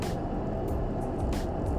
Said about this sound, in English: Just waiting for this car.